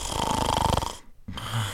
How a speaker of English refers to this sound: On another pillow, the baker snored in huge gusts.